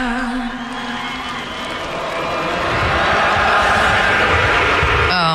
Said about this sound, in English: And then I couldn't tell, like, it seemed like some of the crowd picked up where she left off, and some were booing.